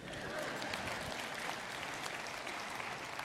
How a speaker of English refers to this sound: I should have told you that was an applause line.